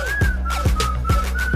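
A bright, steady whistled melody plays over a thumping electronic beat, with heavy bass hits landing about every half second beneath the sustained whistle notes.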